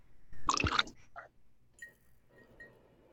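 Cheetah whiskey is poured into a glass: a short loud splash, a few softer gurgles, then a quiet steady trickle with faint glassy rings.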